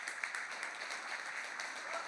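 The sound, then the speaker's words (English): An audience applauds the more than 200 people who went through a discipleship journey this year. The applause is a dense, steady wash of clapping that stays fairly even for about two seconds, a crisp crackle of many hands with no voices standing out. “We've had over 200 people walk through this journey just this year, and we're going to continue to do it, and we love it, and we should applaud that.”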